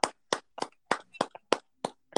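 Hands clap about eight times in a steady, slightly uneven rhythm. Each clap is a sharp, bright smack, with nothing else but a faint murmur between them.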